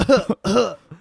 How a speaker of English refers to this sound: You cough on stage a little bit.